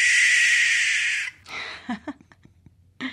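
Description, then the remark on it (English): An owl gives a harsh, raspy screech, not a hoot, lasting just over a second, followed by several short, scattered clicks and chirps. Fairly loud, with no talking. “We've got four owl calls ready to go.”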